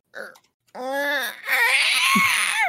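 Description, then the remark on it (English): A person imitates a baby T-Rex scream: a short squeak, then a sustained, wavering high-pitched shriek that grows harsher and raspier before cutting off, loud and alone without talk. “They take muzzle off of the baby Rex, and he screams like, at this point, I put in the script,”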